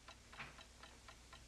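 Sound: clock ticking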